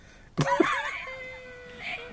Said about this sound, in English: The exploding kittens talking button.